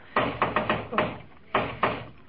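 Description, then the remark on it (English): Someone raps on a door: a quick run of five knocks, a short pause, then two more firm knocks, fairly loud with a slight room echo. “Well, open the door and see what he wants, Dag Cratchit.”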